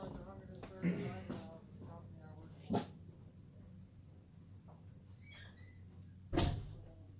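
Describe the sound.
A door is handled and pushed shut, with a couple of light knocks followed by a louder closing thud near the end, against a low background hum and faint voices.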